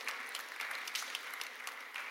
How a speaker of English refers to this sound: worship team, thank you. So good. Yeah, you're allowed to like spontaneously clap for that. That's great.